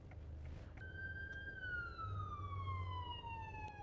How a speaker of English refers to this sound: So we have an ambulance going by. Yep. Running code.